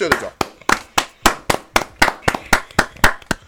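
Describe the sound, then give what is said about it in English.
Steady hand clapping for Senegal's AFCON win, about four sharp claps a second in an even rhythm, fairly loud and continuing for several seconds with no talking over it. “So let's clap for Senegal.”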